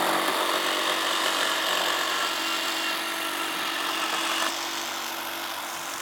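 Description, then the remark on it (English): A saw grinds steadily through wood, a dense, bright rasping hum that holds at a constant level for several seconds before dropping slightly softer near the end. No voices are present. “The wood is cut, the saw removed, and slowly and very carefully, we will find that”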